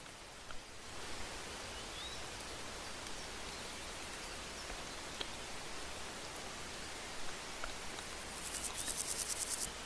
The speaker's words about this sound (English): You can hear a lot of the grasshoppers and crickets on this bit of grass here.